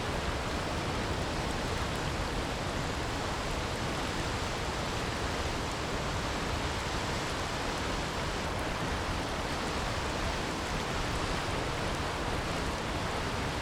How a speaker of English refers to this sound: It's getting louder and louder as more and more water comes rushing by me as I'm making my way to this amazing waterfall.